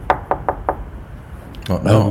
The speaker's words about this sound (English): Knocked on the door again.